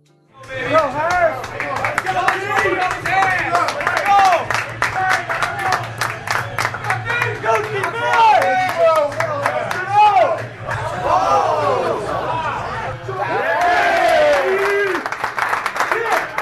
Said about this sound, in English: Bar is Jameson's in Rockaway Beach. It's crowded for a Monday night football game between the Jets and the Pats. The bar is loud with cheering and booing, depending on which team each person bet.